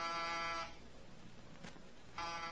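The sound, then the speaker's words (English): A harsh electric apartment door buzzer sounds twice, a sustained buzz, then a pause of over a second before it buzzes again, clear with no voices; no one answers the door. “No answer to the door buzzer.”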